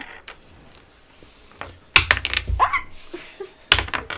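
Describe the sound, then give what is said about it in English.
A ten-sided die (d10) is rolled during a tabletop role-playing game, clattering and tumbling across a hard surface: a burst of sharp, bright plastic clicks and rattles, then one last crisp tap after a short pause, over a quiet background; it lands on 9. “Roll me a d10 and tell me what you get.”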